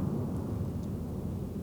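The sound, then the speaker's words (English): An airplane passes overhead at the Marjorie Barrick Museum of Art at UNLV during the Desert Markings land art project, as a steady, deep rumbling roar that holds at an even loudness throughout, with no voices. “I think it's called, we're here for the Desert Markings, and there goes an airplane.”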